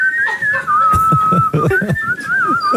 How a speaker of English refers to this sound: Can you and I whistle together? Yeah.